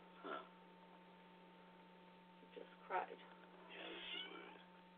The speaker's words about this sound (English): No, the cat says she agrees.